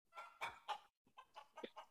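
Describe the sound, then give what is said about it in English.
A chicken clucks in a quick series of short, throaty bursts, a brief pause, then several more clucks, fairly loud with no talking. “That is literally a chicken.”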